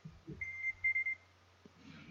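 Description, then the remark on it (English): A phone's 5-second warning alarm sounds a fast series of short, high-pitched electronic beeps in quick bursts over a low steady hum, with faint murmuring around it. “My phone just decided to explode. That was the 5-second warning.”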